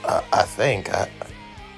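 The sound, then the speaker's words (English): A strange, groaning noise from a horse named Honor in several short bursts, with a warbling pitch that rises and falls, gurgly and throaty, fading to quieter grunts at the end. “What is this? A horse?”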